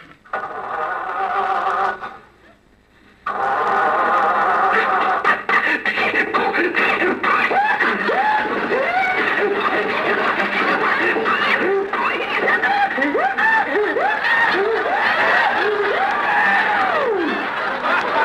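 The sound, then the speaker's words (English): A voice imitates an old car motor sputtering and coughing as the driver tries to start it, failing to catch, with wheezing, rising and falling groans over a steady rattly noise that runs loud for about fifteen seconds. “I can't understand that motor. Maybe there's some dirt on the spark plug.”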